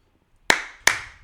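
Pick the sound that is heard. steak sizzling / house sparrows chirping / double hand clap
double hand clap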